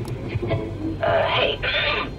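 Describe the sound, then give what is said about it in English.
A radio dial is turned through stations while trying to hold onto an old song during a passing storm: muffled, garbled snatches of sound give way to loud bursts of hissing static that break off briefly and surge back, continuous. “I turned the dial to try and keep the song, but it only made this radio jerk even clearer.”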